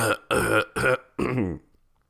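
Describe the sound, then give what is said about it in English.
A person clears their throat in four loud, rough, voiced bursts. The first three are short and evenly spaced, and the last is longer with a downward-sliding tone before fading to silence. “Let me clear my throat.”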